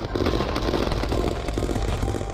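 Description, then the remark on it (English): Rapid, repeated gunshots crackle in a continuous volley, sharp bursts overlapping one another against a dense, rumbling background with no voices. “They keep shooting, keep shooting, keep shooting.”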